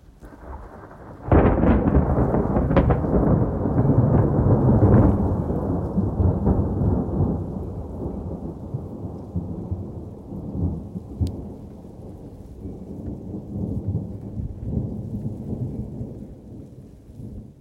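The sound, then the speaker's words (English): A loud crack of thunder bursts out and rolls into a long, deep rumble that slowly fades, over the steady hiss of heavy rain, from a thunderstorm passing overhead outside. “That is the sound of the thunderstorm that was passing overhead as I was recording this episode, as we were live in the pod chat.”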